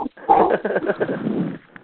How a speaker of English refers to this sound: Yeah, all I hear are dogs.